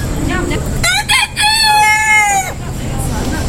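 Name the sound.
rooster crowing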